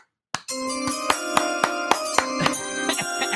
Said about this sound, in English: You forgot how to hit the chime.